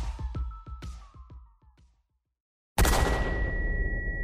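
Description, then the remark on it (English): Gunshot sound effects: a rapid string of sharp cracks fading quickly, a brief silence, then a sudden loud blast that rings on with a lingering metallic tone, with no talking. “The gunshot echoes in this kind of this container as, you know, there isn't really a way for it to go, and neither one of you have any kind of, you know, ear protection, so your ears are all ringing, and you're kind of a little disoriented.”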